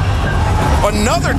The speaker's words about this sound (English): Another truck pulling up to Daly's place?